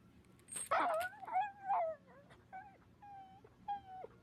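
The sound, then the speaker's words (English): A dog whimpers in a string of high, wavering whines, some sliding up and down in pitch, moderately loud, with short pauses between cries and no talking. “Correct the dog. I don't want to strangle my dog.”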